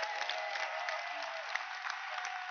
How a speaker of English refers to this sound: Clap your hands for the ministry.